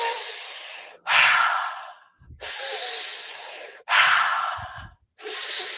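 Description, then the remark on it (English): Loud breathing in and out through the mouth as a cleansing breath in a breathing exercise, several long airy inhales and exhales in a steady rhythm, with brief pauses between each breath and no talking. “And now we're going to go in to the cleansing breath. So this is breathing in and out of the mouth.”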